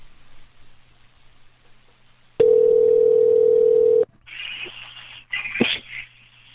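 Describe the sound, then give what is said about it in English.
Faint line hiss gives way to a loud, steady telephone dial tone as a call is placed back to Don Barris, one flat, unbroken hum lasting about a second and a half, then cutting off into bursts of scratchy, hissing line noise. “Or I think we just missed him, so I'm going to call him back here.”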